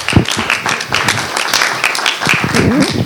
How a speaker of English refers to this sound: So why don't you give him a round of applause.